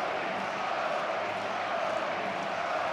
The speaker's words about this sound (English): Listen to the crowd. Fairchild in to run for Joey Votto. And here are the Joey chants.